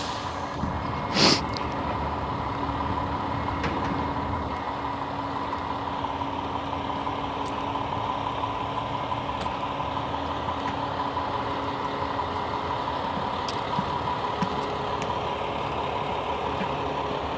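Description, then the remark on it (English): A cement truck idles at a site where sidewalks are prepped for a concrete pour, its drum not yet spinning; a steady low rumbling drone with a constant hum that holds unchanged throughout, broken only by one brief sharp click near the start. “Drum isn't spinning, so it's not pouring yet, but probably momentarily.”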